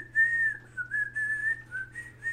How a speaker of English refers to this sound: oh, I just got the tune you were whistling. Yeah. The Soul Eater, like, derp sound or whatever.